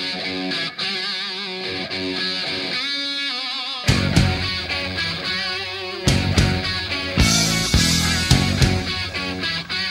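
A sustained, distorted guitar opens alone, then a loud hard rock band crashes in with a chugging, repeating riff and pounding drums. No one speaks over it.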